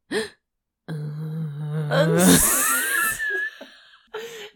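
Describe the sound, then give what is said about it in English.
A voice imitates a man's sharp, rasping inhale followed by a long, deep guttural groan from the chest, fairly loud, with a brief breath at the start and end. “Behind her, Quinn inhaled sharply, then groaned deep in his chest.”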